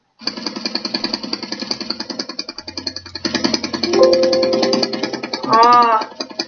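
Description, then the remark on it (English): A car engine sputters in a rapid, rough, machine-gun-like rhythm throughout, steady and fairly loud, right after the car has crashed and as it keeps driving, with a brief tonal whine and a rising-falling voice-like cry toward the end. “And you can hear it sputter from here.”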